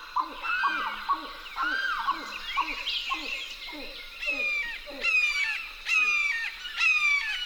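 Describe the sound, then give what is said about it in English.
Marsh birds at the Wakissa River's edge in a riverine marsh in Florida call nonstop: chattering grebes, a limpkin and a red-shouldered hawk. Quick chattering and wailing cries overlap at first, then harsh, screechy calls repeat in a steady series toward the end. No one speaks. “Lang Elliott and Ted Mack went to the Wakissa River's edge and recorded chattering grebes, a limpkin, and the harsh call of a red-shouldered hawk.”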